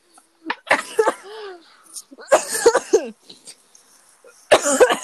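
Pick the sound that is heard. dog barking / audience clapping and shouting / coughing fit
coughing fit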